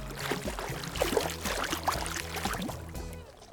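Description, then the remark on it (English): River water flows and laps steadily around a kayak on the last stretch of the Cuyahoga River, where it flows into Lake Erie in Cleveland, Ohio; a continuous wash with small splashy gurgles and a low background hum, no voices. “The last stretch of river flowing into Lake Erie.”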